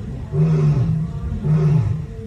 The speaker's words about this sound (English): Two, this noise waking me up at 11, 1, 2, 3 a.m. Have a listen. It's the lions.